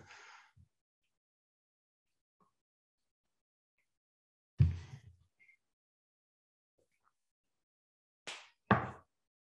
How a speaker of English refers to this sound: Give me one second. I just got to shut my door.